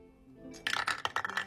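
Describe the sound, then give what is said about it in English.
A d20 die, rolled to pick a sauce, clatters across a hard tabletop, a quick run of sharp, bright clicks and rattles that bounce several times before stopping. Fairly loud, with no voices. “D20 sauce roll. Things are going so well, but everything could get ruined here. Skull dice, don't fail me now.”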